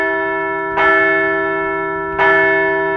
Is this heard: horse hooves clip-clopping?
no